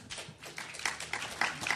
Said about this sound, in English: Take time for applause.